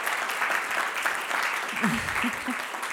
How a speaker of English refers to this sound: Big round of applause.